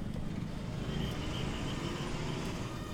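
Steady wash of busy street traffic outside the airport in Mumbai, India, in humid air: a dense low rumble of engines and passing vehicles with faint horn-like tones, continuous, no voices.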